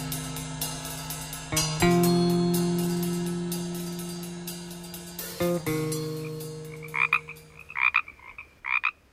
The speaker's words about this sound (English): Leave you this week in the company of frogs. These are Pacific chorus frogs, once prolific and common around California, and providing an outdoor nighttime soundtrack for many Hollywood movies.